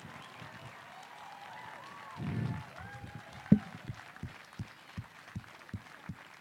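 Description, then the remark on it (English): Faint clapping from an audience welcoming new staff being commissioned for ministry settles into a steady rhythmic beat of single claps, roughly three per second, with a low murmur of voices in the background. “You're going to have to clap for a long time because they're walking from far away.”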